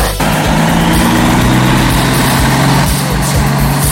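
A truck engine idles, a steady, loud low rumble with a droning hum that holds for the whole few seconds without any voices.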